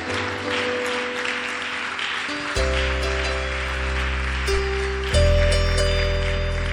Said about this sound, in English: Jesus. Hallelujah. Please clap your hands for the Lord.